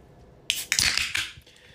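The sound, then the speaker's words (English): An aluminum White Claw drink can is cracked open: a sharp metallic snap, then a loud fizzing hiss with a few more clicks of the tab. It lasts about a second, with no talking. “Yes, that's the second White Claw crack of the evening.”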